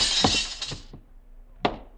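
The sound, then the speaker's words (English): An empty glass goldfish bowl smashing: a loud crash with bright, sustained shattering and tinkling for about a second, a few scattered impacts, then one more sharp crack of glass. “Well, if you have no goldfish, you don't need the bowl.”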